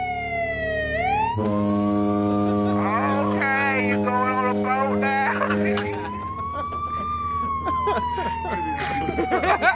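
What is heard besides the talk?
police siren sound effect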